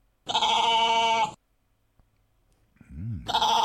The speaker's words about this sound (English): That's a goat. Yeah. That is a goat. Yeah. It is a goat. And I think there's one more goat to boot.